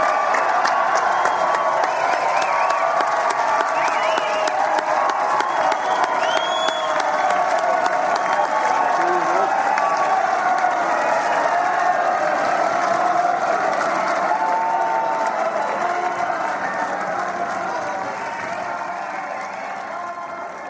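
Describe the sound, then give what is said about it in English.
A large crowd celebrates after a rugby game with sustained, loud applause and cheering, a dense roar of clapping and shouts with occasional whoops that stays steady before easing slightly near the end. “The celebrations are going on in the background”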